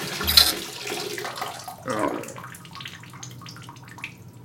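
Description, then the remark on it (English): Water runs steadily into a bathtub, a continuous splashing rush with a brief louder gush near the start and another surge midway, then settling into a softer, even flow. “he remembered he had not turned off the water in the bathtub.”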